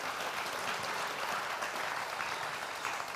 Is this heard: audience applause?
yes